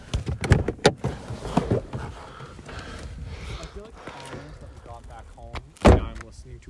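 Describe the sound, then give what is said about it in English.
A car door clunks and thuds shut amid several sharp knocks and rustles, with a loud slam near the end; people talk and move around throughout. “My door.”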